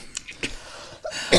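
A few short, muffled bursts, like someone stifling a cough, come at uneven intervals, ending with a louder, breathier burst. Quiet, with no talking.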